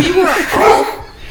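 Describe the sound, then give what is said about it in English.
A dog gives a few quick, high barks, yippy and slightly whiny, over a brief moment with no other clear sounds around it. “I heard your dog in there.”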